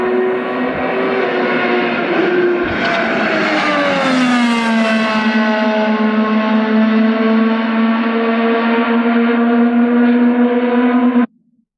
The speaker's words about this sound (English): you hearing that IndyCar in an empty Phoenix International Raceway.